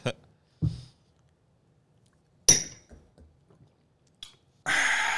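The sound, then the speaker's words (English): A few sharp clicks and knocks, including one bright ringing clink of glasses, followed by a short gulp and a breathy rush of air as a shot is downed. “Us for a shot, lassie. Cheers. You're drinking”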